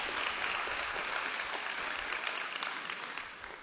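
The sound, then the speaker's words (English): An audience applauds with dense, steady hand clapping that stays loud and even throughout, fading slightly at the end, with no voices standing out over it. “Y'all give them all a hand clap.”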